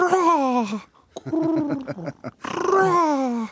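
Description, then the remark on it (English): A person imitates a pigeon's cooing with three throaty, warbling bursts, a long falling coo, a choppy stuttering middle stretch, then another drawn-out coo, fairly loud. “But what's pigeon French? Well, it's... It's what pigeons talk.”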